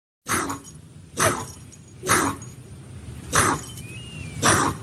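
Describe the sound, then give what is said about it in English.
A debarked labradoodle named Curly, its vocal cords clipped, lets out five hoarse, breathy, raspy barks, evenly spaced about a second apart, with no one talking. “So what's with that labradoodle?”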